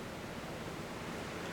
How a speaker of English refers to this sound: Well, we're in the middle of the ocean, Navigator.